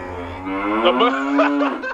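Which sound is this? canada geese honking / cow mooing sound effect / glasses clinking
cow mooing sound effect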